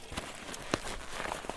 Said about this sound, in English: We arrive at the end of the road and hit the trail on foot to see if we can track down the herd.